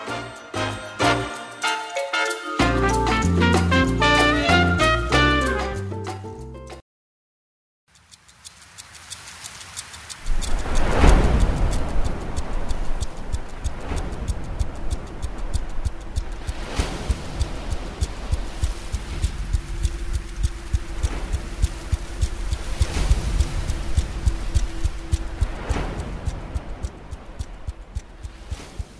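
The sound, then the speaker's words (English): Tense film score music from an upcoming film, with a low rumbling drone and a steady, ticking, throbbing pulse, preceded by a short bright melodic passage and a brief silence. Loud, with no voices. “This is the soundtrack from the upcoming film Dunkirk, which will be out next week”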